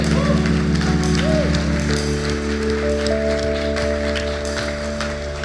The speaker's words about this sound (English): It's a great privilege to baptize you in the name of the Father, the Son, the Holy Spirit. Amen. Let's give a clap.